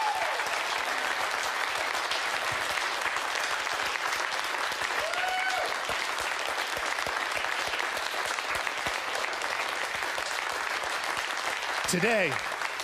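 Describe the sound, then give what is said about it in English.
A large crowd claps loudly and continuously for over ten seconds on Easter morning, a dense, steady roar of hands with a few voices calling out above it near the end. “I'm going to ask you right now to clap like you've never clapped before, because this is Easter morning.”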